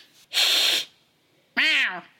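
A cat named Goomba hisses sharply, then after a short pause lets out a single rising-and-falling meow, fairly loud with no talking.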